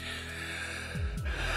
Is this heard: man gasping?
yes